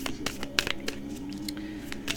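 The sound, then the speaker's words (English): An oracle card deck being shuffled, a run of quick, irregular papery snaps and soft rustles over a low, steady hum. “I'm just shuffling.”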